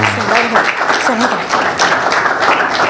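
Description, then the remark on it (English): An audience at a church children's ministry Christmas program claps steadily for about three seconds as the children come out. It is a dense, even patter of many hands with a few voices calling out over the applause. “Let's clap for the kids as they come out, please.”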